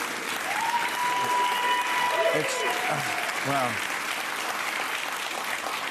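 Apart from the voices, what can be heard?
studio audience applause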